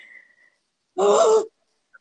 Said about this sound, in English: What is the purpose of that noise? It's called a gasp if you've never heard that.